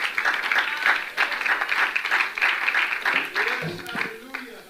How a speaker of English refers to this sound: In the name of Jesus, let's clap your hands to the Lord. Let's clap our hands to the Lord and love Him as you're seated. Hallelujah. Oh, thank you, Lord. Thank you, Lord. Clap our hands again to Him.